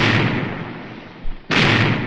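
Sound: cannon firing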